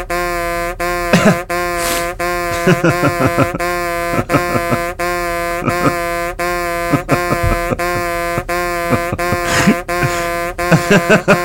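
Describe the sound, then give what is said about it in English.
A loud, steady electronic censor beep drones almost continuously, broken by brief gaps, while muffled voices talk underneath. “I'll beep this.”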